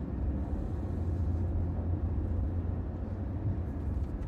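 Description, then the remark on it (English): A steady, low rumble of many car engines and road noise as cars drive into a village, continuous and fairly loud throughout, with no voices. “First time I've seen this many cars coming into Cruxmont.”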